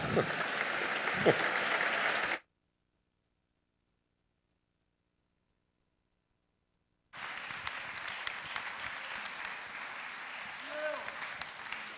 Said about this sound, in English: And it says Professor Pete and Ruth Smith go off to rapturous applause.